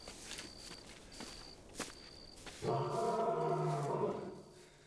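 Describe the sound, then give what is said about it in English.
Soft footsteps and a faint high whine, then a red lion lets out a loud roar that holds for about a second and a half before trailing off. “This lion? Is that the lion?”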